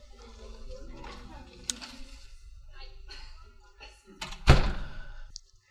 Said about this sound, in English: All right. I'm going to shut this door.